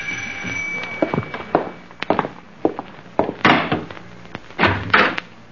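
A house door being opened at about 8 o'clock to answer the doorbell, with a series of sharp clunks and heavier thuds spaced irregularly over a few seconds. No one speaks.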